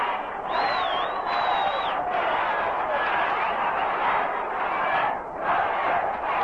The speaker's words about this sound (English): A crowd chanting, let's go Mets.